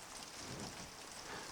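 Heavy rain patters steadily on a taut fabric tent, a dense, continuous hiss of drops with no voices and no breaks.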